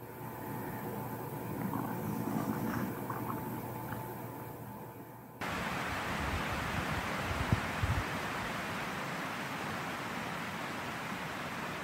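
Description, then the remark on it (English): Rushing creek water about 50 yards away makes a steady, loud wash of noise, muffled and rumbling at first, then abruptly turning into a bright, constant hiss that continues unchanged to the end. “That loud sound is the rushing creek some 50 yards away and is the power that creates a white noise that keeps the portal charged.”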